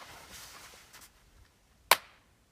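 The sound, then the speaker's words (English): A single sharp, loud hand clap cracks out of near silence, followed by a brief fading echo across the mountains. Faint rustling noise comes before it. “Did you hear that clap, the echo?”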